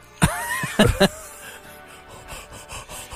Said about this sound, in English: I think it was me, because my mouth was very close to the muff, and I took a lungful to get